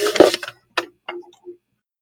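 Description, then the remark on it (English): A phone vibrates against a wooden desk in several rattling bursts: a longer buzzing clatter first, then three shorter ones with brief silences between, no voices. “Sorry, I've got a phone trying to dance its way off my desk at the moment.”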